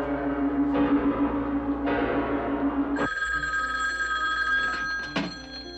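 A telephone bell rings loudly, a harsh metallic trill that comes in bursts over a steady low hum, with the ringing growing brighter and more sustained partway through.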